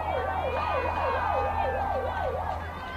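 An ambulance siren warbles rapidly up and down in a steady repeating cycle over a constant low rumble of traffic, heard at a baseball game, with no one talking.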